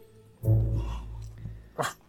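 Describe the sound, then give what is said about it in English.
Loud barking from grown men dressed as dogs imitating dogs: a deep, drawn-out woofing bark, then a short, sharp yelp about a second later. “Those are dogs. Those are people barking.”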